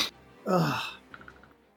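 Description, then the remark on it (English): A man sneezes, a single loud burst for about half a second with a voiced, falling pitch, then fades into quiet with a few faint ticks. “As he sneezes.”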